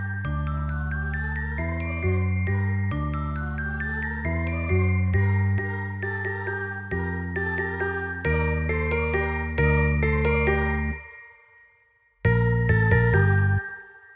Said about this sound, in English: You've been listening to poems from In Memoriam by Alfred Lord Tennyson and music from The Carol of the Bells by Ukrainian composer Mykola Leontovych.